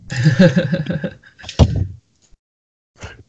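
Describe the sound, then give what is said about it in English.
A door swings into a door stopper with a sharp thunk and a short rattling ring, after a brief muffled voice; a fainter knock follows a moment later. Moderately loud. “She's like, yeah, just move the door stopper.”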